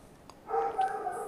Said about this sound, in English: You can hear Zeus. He's the dog that lives on our property here.